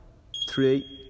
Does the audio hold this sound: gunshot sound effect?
no